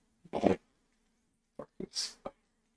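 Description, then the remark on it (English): A short, low, sputtering fart, followed after a pause by a few brief scattered bursts and a breathy hiss. “Damn, what did you eat? Barking spider, I got it.”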